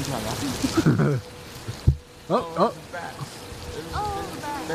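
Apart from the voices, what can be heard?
rain falling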